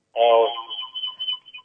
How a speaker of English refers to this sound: Yes, we're there, but we're getting very funny feedback.